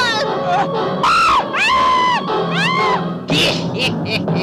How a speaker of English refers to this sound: And now the screaming starts. For them. And for you.